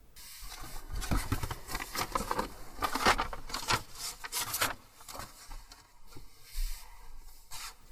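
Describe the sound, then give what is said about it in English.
Paper rustles and rubs in irregular bursts as sheets of notes are shuffled and flipped in Petscop 7, with soft dry scrapes and brief pauses between handlings; no one speaks. “As Petscop 7 begins, we find ourselves back in the quitter's room with Paul checking things out before we hear him seemingly shuffling through notes he's taken.”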